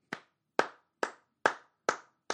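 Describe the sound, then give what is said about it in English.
One person claps six times in a studio at a steady, slightly uneven pace, each clap a sharp, dry smack with a quick decay, with no voices. “I got to do an in-studio clap real quick.”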